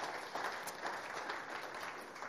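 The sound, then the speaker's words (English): An audience claps steadily for two new babies, a dense wash of many hands applauding together, continuous and fairly loud for a couple of seconds. “So let's give the two new babies a clap.”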